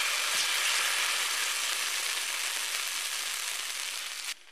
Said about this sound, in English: And I'm going to put some butter on there. Once your butter is nice and sizzling, you can spoon a little bit of your batter right onto your griddle and let it cook.